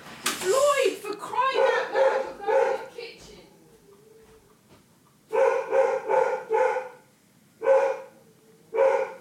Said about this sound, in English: Let's just see why the dog is barking so vociferously. Hooray, it's dog time.